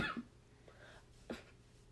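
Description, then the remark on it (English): A few muffled coughs held back by a sick person: short stifled bursts, the first at the start and another sharper one about a second later, quiet, with no talking. “I'm sick, so I'm trying to hold in the coughs.”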